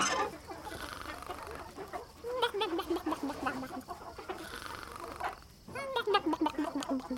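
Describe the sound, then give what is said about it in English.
Hens cluck steadily in a chicken coop on a farm, with a burst of drawn-out, falling squawks near the middle and another near the end, over a low farmyard murmur. “Was she in the chicken coop?”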